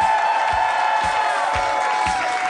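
A large crowd of 72,000 people at a Harmontown show cheers and applauds loudly and steadily as the mayor of Harmontown, Dan Harmon, is brought out, a dense wash of clapping with whoops and shouts rising above it, no pause throughout.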